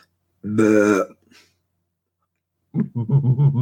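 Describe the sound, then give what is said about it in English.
A loud, drawn-out voiced croak lasting about half a second, a person mimicking a burp, followed after a pause by someone speaking. “Burp. No, I'm faking it. I can't burp at all.”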